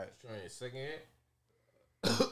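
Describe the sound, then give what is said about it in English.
A voiced, strained vocal sound trails off into a brief silence, then a sudden harsh, raspy, loud cough bursts out at the end as a person coughs after taking a second hit. “That nigga went in coughing.”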